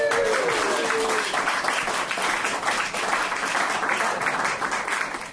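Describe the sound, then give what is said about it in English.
A gig audience applauds steadily for several seconds, a dense wash of many hands clapping at an even level, with a brief whistle or cheer near the start. “That deserves not only a round of applause, but also possibly counselling.”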